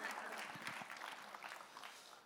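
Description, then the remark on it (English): An audience breaks into applause, a dense, steady wash of many hands clapping together that holds at an even level for a couple of seconds. “You can clap right there. That's a good place to clap.”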